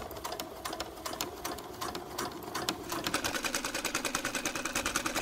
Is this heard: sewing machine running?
yes